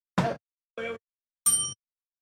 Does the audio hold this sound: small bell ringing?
yes